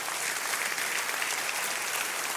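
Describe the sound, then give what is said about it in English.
A crowd of people clapping their hands together in a dense, steady wash of applause that stays evenly loud throughout, with no voices heard. “Clap your hands in Jesus' name.”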